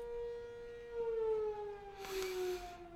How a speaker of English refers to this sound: Sorry, we live next to a fire alarm.